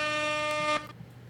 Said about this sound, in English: Man, give an air horn to Joey. Give an air horn to Joey.